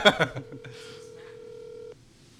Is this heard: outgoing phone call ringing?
yes